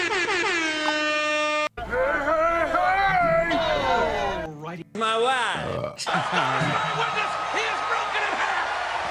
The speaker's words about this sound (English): Is that better? I like the air horns.